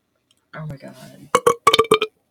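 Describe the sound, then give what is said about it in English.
A long, low, gurgling burp made directly into a brand new microphone sounds loud, followed right away by a few quick bursts of laughter. “I burped directly into my brand new microphone.”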